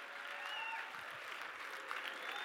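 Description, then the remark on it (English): A church crowd applauds steadily to welcome a guest pastor from Melbourne, Australia to the platform, dense clapping with a few faint whistles or cheers rising above the roar. No one speaks. “Even those he's in Australia, come on, cheer him on.”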